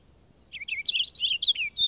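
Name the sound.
purple finch song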